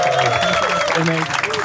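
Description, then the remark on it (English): An audience claps steadily and loudly throughout for a guest who joined them that night, a dense wash of applause with faint voices and whoops rising underneath. “Please give a huge round of applause to Larry Dean for joining us tonight.”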